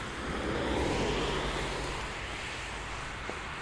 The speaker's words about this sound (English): All right, let me see if I can cross the road here without getting run over. These cars are going fast. Maybe after this one. Yep.